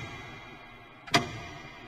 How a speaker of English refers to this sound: Why is that damn clock so loud? Do any of the rest of us hear it? Don't you hear that ticking?